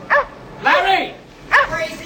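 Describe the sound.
A person mimics a dog with three loud barks: a short yap, a longer drawn-out woof, then another sharp bark after a brief pause.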